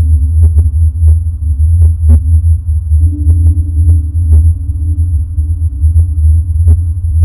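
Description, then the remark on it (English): A recording of the mysterious low-frequency hum: a deep, steady low-pitched hum drones continuously, throbbing slightly, with faint irregular clicks and ticks scattered on top and no voices. “If you are an experiencer of the hum, we would love to hear from you.”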